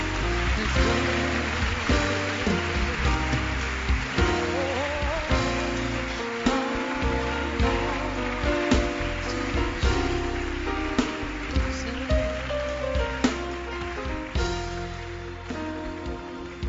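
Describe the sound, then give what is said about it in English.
A church audience applauds steadily for people coming forward at an altar call, a dense wash of many hands clapping at even loudness for the whole stretch, with sustained musical tones running underneath. “Keep clapping for them.”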